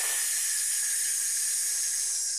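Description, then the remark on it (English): A steady, sustained hiss of breath pushed out through the teeth while exhaling and pulling the abdominal muscles in during a breathing exercise, bright and airy, holding an even level for a couple of seconds with no talking over it. “And as you're pushing the air out, you're going to make a hissing sound.”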